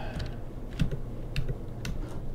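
Keys clatter on a computer keyboard in a testing room in short, uneven bursts of clicks, over a low steady background hum with no one speaking.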